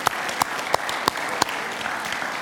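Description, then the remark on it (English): A church audience claps for confirmands who have just read a scripture passage, a dense, hissing wash of applause with a few sharper individual claps popping out at a quick rhythm. No one speaks. “A little round of applause for our confirmants reading that scripture, yeah.”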